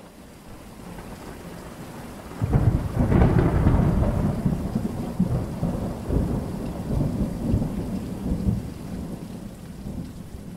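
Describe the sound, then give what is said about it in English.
Steady rain hisses throughout at the start of monsoon season as a loud clap of thunder breaks a few seconds in and rolls on in a long, deep rumble, fading slowly under the continuing downpour. No voices. “The start of monsoon season has officially come, and hopefully this means we can look to the dusty sky for a few drops of rain.”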